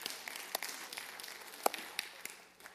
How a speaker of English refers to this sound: One of us claps, we all clap. Remember, that's the rule.